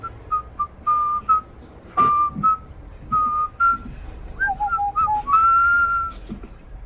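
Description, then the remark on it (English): An excited man whistles a quick, lively tune of short bright notes and brief slides, fairly loud, with a faint background rumble and no talking. “is whistling in his socks because he's very excited.”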